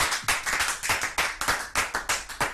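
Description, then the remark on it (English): An audience at a church service claps for the Holy Spirit together in a steady, rapid rhythm, many hands producing sharp, bright, loud bursts that overlap into a continuous patter with no voices. “Oh, clap for the Holy Spirit.”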